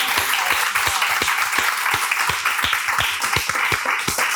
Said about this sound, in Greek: Της αξίζει ένα μεγάλο χειροκρότημα.